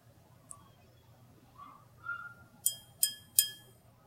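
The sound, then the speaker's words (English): Three bright, ringing clinks of a drinking glass bought at Target in quick succession, each tapping out against a quiet, low background hum with a faint tick just before. “Where'd you get this glass from?”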